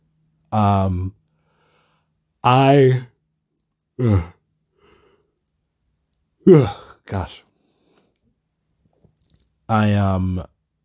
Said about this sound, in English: I am tired, as you can probably tell from my yawning.